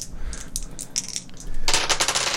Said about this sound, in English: Roll it. So that is 2 successes, 3 advantages, which triggers a crit. Here's the dice.